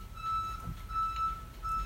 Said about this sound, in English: That's the landscapers. Their truck's backing up. Beep, beep, beep.